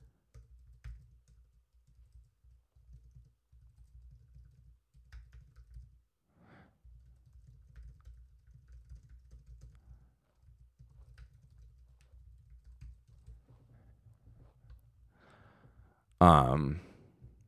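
Quiet tapping of someone typing a text message on a phone, continuing steadily with short pauses for about fifteen seconds, then a sudden loud exhale near the end.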